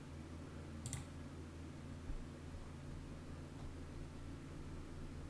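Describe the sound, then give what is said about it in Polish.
A single sharp computer mouse click, clicking Submit to publish a playlist, stands out near the start over a steady low electrical hum and hiss, followed by a faint soft bump; no one speaks. “Klikamy Submit.”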